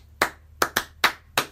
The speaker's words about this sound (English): By whatever means, the clappers come up with their song. They then, without saying or singing anything, clap out the rhythm of the song.